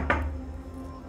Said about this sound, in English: I move full speed. Rap on the door.